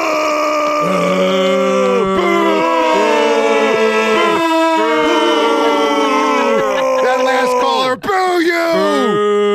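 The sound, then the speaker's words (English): A loud crowd boos together, many voices holding long, low, wavering tones that repeatedly dip and swell, layered continuously for several seconds with one brief break near the end. “But so booing hard.”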